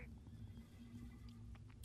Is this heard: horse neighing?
yes